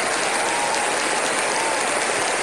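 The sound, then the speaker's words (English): Steady, dense applause from a crowd, a continuous crackle of many hands clapping at even loudness for a couple of seconds, with no voices. “We applaud you.”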